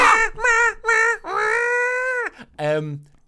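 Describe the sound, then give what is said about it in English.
A voice imitates a phone flash flood warning emergency alarm with loud, nasal, wavering tones: three short bursts, one long held note, then a brief final wail. “As we get to like 5 minutes from the hotel, our phones start making this ludicrous alarm noise.”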